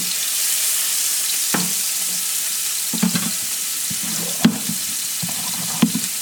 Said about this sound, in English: Okay, onion in the pan. Make sure I lower the heat down here so I don't brown the onion at all. I just want to sweat it down.